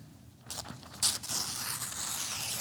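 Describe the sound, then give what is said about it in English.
A single sheet of paper rustles and crinkles, starting after a brief quiet moment, with a sharper crackle early on, then steady papery handling noise to the end. “Single sheet of paper. Don't try this at home.”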